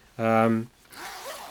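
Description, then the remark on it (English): A single quick pull of a YKK zipper on a hammock made of very soft, light Hexon fabric from Dutchwear Gear, loud, gives a buzzy rasp lasting about half a second, followed by quieter talking as someone begins to speak. “I've got YKK zips.”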